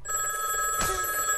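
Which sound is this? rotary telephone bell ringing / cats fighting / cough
rotary telephone bell ringing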